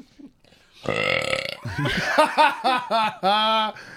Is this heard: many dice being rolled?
no